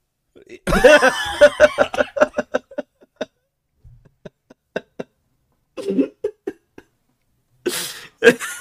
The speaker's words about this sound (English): Holy shit. She just choked.